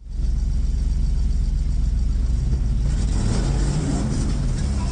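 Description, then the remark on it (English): A race car's engine roars steadily, a continuous low rumble with rushing, gritty noise that grows rougher partway through, with no talking. Dash cam audio from the Kahnawake Ice Racing Series, with cars racing on the ice of the St. Lawrence River. “Two cars fell through the ice as they raced on the St. Lawrence River.”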